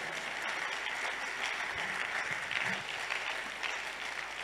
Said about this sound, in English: Give a clap unto Jesus.